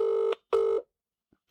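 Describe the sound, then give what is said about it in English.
A phone ringback tone sounds twice while calling a friend, two steady buzzing bursts with a short gap between them, followed by a faint click as the line connects. “So I'm going to phone her now.”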